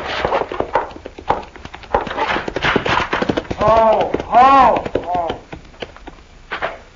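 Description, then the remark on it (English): Hoofbeats of Pete's horse riding into town on an early evening of misty rain clip-clop in a quick, steady rhythm of sharp knocks, holding fairly loud throughout, with a wavering, pitched vocal sound rising over them midway. “Sam, Pete's riding into town.”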